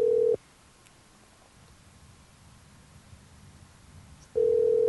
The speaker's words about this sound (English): It's ringing. I hope he answers. Well, if not, we get to leave a message.